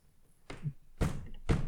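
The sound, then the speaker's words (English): A forehead bangs against a desk three times in a steady rhythm, each hit a dull, solid thunk, with the last blows landing harder than the first. “That's my fucking forehead against the desk, you plebs.”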